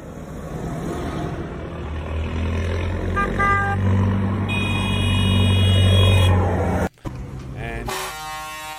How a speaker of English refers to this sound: And they have headed out to The Hague. We got a video of all these tractors going straight to the belly of the beast.